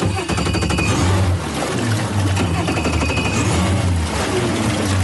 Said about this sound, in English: Now we want to hear, for the first time, the motor starting up. All that work that you've put in for so long to get this amazing boat here, I want to hear you start the motor and make sure it starts.